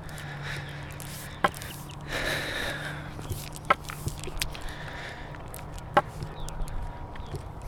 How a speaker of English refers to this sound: You know, this park, these footsteps, this stone path, I'm thankful for it.